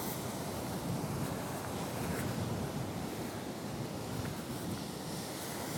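Big ocean waves crash onto rocks at a beach and churn in a continuous, loud roar of surf, with gusting wind blowing across the microphone throughout and no voices present.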